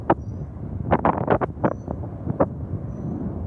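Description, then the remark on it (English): Wind buffets the microphone in a constant low rumble, broken by several sharp gusty bursts of rough crackle clustered near the middle, loud throughout. “Well, now he's not facing the wind, and we can actually hear what they're saying.”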